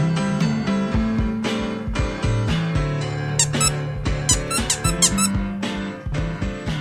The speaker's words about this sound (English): What's up with Diesel? Diesel won't let me play with his squeaky toy anymore.